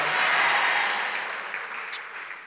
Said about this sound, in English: Your clap is like it's raining.